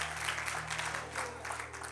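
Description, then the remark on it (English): A crowd applauds steadily, giving God a hand clap of praise, many hands clapping in a dense, continuous wash of sound with a low hum underneath, no voices rising above it. “Come on, give God another hand clap of praise tonight.”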